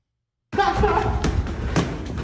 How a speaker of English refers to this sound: Oh, look at her right there landing punches, though. That's that Bones Adams, right? Is this Bones Adams? Mm. She a dog. Left hooky.